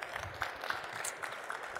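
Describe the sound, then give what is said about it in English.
An audience at an Expo applauds a panel from the American Frozen Food Institute, Potatoes USA and the National Potato Council: a dense, steady patter of many hands clapping at once, fairly soft and even throughout, with no voices rising above it. “For our audience here attending Expo, let's give our panelists a round of applause today.”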